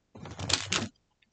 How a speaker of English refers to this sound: He hides in the cupboard. Someone comes in the room and opens the cupboard door.